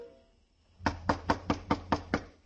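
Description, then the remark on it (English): A rapid series of seven firm knocks on a door by the police, evenly spaced, ringing out sharply with no voices. “Right now it was a street where Paul's murderer might be waiting in a dark room behind a locked door, waiting for a knock that had to come.”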